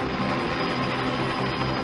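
A helicopter in a film scene roars steadily, its engine and rotor wash forming a dense, loud, unbroken drone with a low throbbing undertone and no voices, as a man is about to take it down with a bullet.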